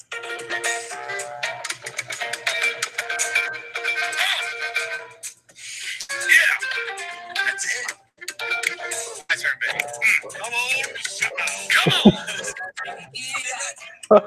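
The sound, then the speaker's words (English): A bouncy, funky tune plays back through a small phone speaker, sounding thin and slightly tinny at moderate volume, with voice-like sounds woven through the music for about fourteen seconds. “this little funky tune came on, and I was like, dude, this is it. That's the song.”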